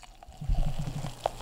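Sparkling wine glugs from a bottle into a glass in a quick run of low, rhythmic gurgles, moderately loud, with a single bright ring of glass near the end.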